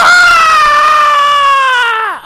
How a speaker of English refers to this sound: The man who's got the scream. The master of the Rebel Yell.